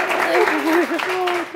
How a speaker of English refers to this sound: Clap for us again just to like...